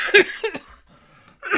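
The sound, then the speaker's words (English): Two quick, sharp coughs close together, followed by a short pause and a third rougher cough, moderately loud, with no talking. “is always coughing.”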